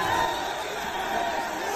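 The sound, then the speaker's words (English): A huge crowd in Melbourne celebrating at 4 a.m. as Australia qualifies for the World Cup knockout stages, a dense, steady roar of many voices that stays loud and unbroken for the whole short stretch, with no single speaker standing out. “Australia's qualifying for the knockout stages led to huge crowds celebrating at 4 a.m. in Melbourne.”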